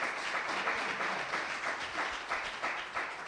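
A crowd clapping their hands together in praise of Jesus, steady, dense applause, many claps blending into a continuous crackling wash with slight rhythmic swells, no voices over it.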